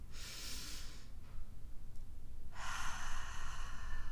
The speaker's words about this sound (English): So we are going to do our full body scan. We'll take a deep breath in through our nose, out through our mouth.